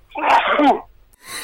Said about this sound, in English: Quite a sudden sneeze.